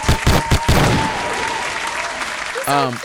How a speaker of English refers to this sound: I had a baby, a little boy. Hand claps for him.